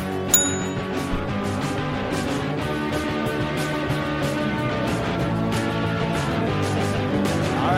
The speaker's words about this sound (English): And I'm going to go ahead and ring that bell.